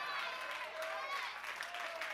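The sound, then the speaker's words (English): An audience claps steadily during a sermon in a dense, continuous patter that fills the room, with voices faintly mixed in beneath the applause. “Go ahead and clap. You may as well.”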